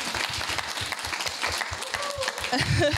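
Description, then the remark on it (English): An audience applauds a freshman class president in a dense, steady wash of many hands clapping, holding at an even loudness, with a few raised voices cutting through toward the end. “Well, first, I think that they owe you another round of applause because you're a freshman class president.”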